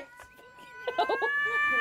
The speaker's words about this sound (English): What was that? It was a cat. A cat. Yeah, strangling. No, it's him strangling me. That was the strangled cat noise.